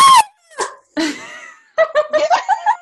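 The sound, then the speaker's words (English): A voice imitates the character Audrey screaming as she watches from the scepter: a few short, high-pitched shrieks, then a rapid run of loud, wavering wail-like bursts, with no other talking. “That's what she did every time. Every time! She screamed!”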